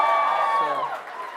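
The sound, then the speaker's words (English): A church audience cheers and whoops in a brief, loud burst of many overlapping voices, with some clapping mixed in, fading slightly toward the end, answering the preacher's call to clap and cheer for Ireland during a morning service. “If however you feel it's in Ireland somewhere, then feel free to clap and cheer.”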